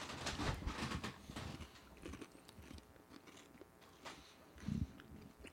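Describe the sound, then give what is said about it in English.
A crisp bite into a Nestle Crunch chocolate bar from a kids' fundraiser, followed by several seconds of loud crunching and chewing with irregular crackly snaps, no voices. “This is a Nestle Crunch, but it is good.”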